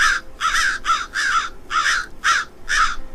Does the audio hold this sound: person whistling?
no